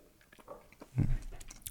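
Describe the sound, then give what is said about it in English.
Wet chewing and lip-smacking on a sip of bourbon while tasting it, drawing in air in the so-called Kentucky chew, a quick run of soft clicks and smacks with a fuller swishing burst in the middle. No talking. “And then kind of give it one of those, like, get some air in there and chew it a little bit.”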